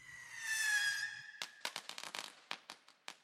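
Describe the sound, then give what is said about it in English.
A rising whistle, like a launching rocket, gives way to a quick, irregular string of sharp popping and crackling bursts from exploding fireworks, loud, with no voices. “The fireworks!”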